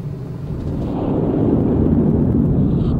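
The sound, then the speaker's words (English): A deep, roaring rumble of a simulated volcanic eruption, modelling Krakatoa's explosion of 535 AD, swells and holds steady, loud, with a heavy low-end roar and no voices over it. “simulation was used to model Krakatoa's 535 AD Big Bang.”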